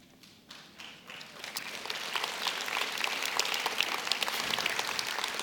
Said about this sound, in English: Now, if you're clapping already, I haven't even got into the verse yet. This is going to be awesome today.